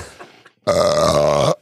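A single long, loud burp, rumbling and drawn out for nearly a second after a brief faint breathy lead-in, with no talking.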